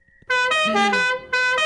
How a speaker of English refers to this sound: A boat shows up. Oh, that's a boat honk. That's a boat.